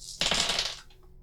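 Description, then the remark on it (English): A handful of six dice clatters across a hard tabletop during a game in a quick burst of sharp, rattling clicks that lasts about half a second, fairly loud, then settles into quiet; two fives are rolled. “I rolled 2 5s.”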